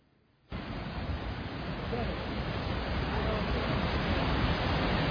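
A steady, loud roar of river rapids, flowing from Lake Erie to Lake Ontario beside Goat Island just above the falls, cuts in after a brief quiet moment and continues unbroken, a dense wash of churning water.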